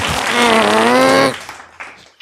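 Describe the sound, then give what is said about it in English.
A single drawn-out, buzzy fart lasting over a second, loud, with a steady wavering pitch, then it cuts off into quieter rustling and faint background noise. “Yeah, well, do you turn into a New Yorker when you have to fart?”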